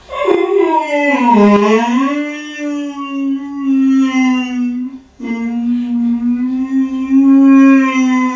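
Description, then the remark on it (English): A loud, mournful howl of despair from a depressed AI computer opens with a wavering dip in pitch, then holds a long steady tone, breaks off briefly, and resumes in a second drawn-out, unbroken wail. No one speaks. “His primeval howl of despair.”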